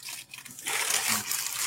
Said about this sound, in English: How about turning your mic off so we don't have to hear that rattling paper?